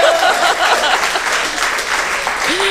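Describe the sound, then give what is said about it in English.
An audience claps steadily throughout, a dense, even wash of many hands with no break, and a faint rising tone briefly appears near the end. “Applause will get you everywhere.”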